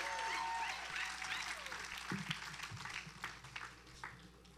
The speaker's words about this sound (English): And so I have three brave individuals that are gonna come up on stage. Come on, come on, come on. Y'all clap it up for them.